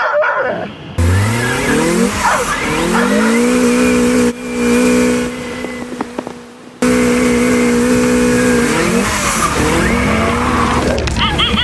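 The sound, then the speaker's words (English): A toy truck's small motor whines steadily, rising and falling in pitch as it speeds up and slows, with tire-like skidding squeals, while Arthur the dog chases it on a beach and barks now and then, in a GoPro video. “Arthur the dog on the beach chasing a toy truck.”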